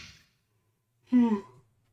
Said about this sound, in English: I gotta yawn. Hold on.